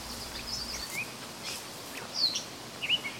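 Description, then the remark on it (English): A gray catbird calls outdoors on Grannis Island, a few short, high, scratchy chirps scattered over a few seconds, fairly faint against a soft background hiss. Nobody speaks. “Okay, so that's the catbird cone.”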